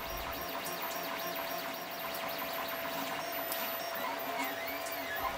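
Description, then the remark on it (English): An office document printer runs continuously, its motors whirring and warbling in rising and falling tones over a steady mechanical hum, with no one speaking. “It can be found in every school and every office around the country. And in this office, it is the bane of my existence. It's the printer.”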